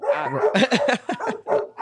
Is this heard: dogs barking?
yes